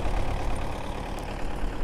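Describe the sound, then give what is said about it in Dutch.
A tractor's heavy diesel engine rumbles steadily as it circles a building clearing snow that fell overnight, a low continuous drone with slight fluctuations, no voices present. “Een tractor maakt rondjes om het gebouw om de vannacht gevallen sneeuw weer op te ruimen en later zal die hier opgehaald worden door de vrachtwagens en naar buiten de stad worden vervoerd.”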